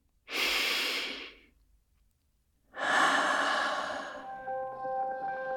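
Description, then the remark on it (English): A long, airy breath in, a brief pause, then a slower, longer breath out, both soft and breathy, taken as part of a guided breathing exercise; faint sustained tones emerge toward the end of the exhale. “Take a long breath in and let it out slowly.”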